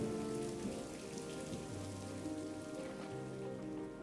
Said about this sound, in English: Well, look at that. It's raining.